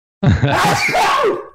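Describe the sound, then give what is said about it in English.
A single loud, drawn-out sneeze with a strained, groaning, almost roaring vocal quality. It lasts over a second, bursting in sharply and then trailing off, with no other sound around it. “dressed as sneezing. That was not a lion attacking a helpless hyena”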